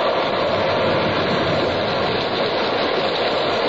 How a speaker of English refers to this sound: By evening, the Pequod, torn of her canvas and bare poles, struggled as sky and sea roared. The disabled mass fluttering with the rags of canvas left by the first fury of the tempest.